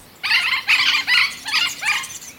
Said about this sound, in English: This parrot was feared to be extinct in 1997. But 2 years later, researchers found a small number surviving high in the Andes Mountains. And their populations in subtropical and temperate forests have begun to recover in recent years.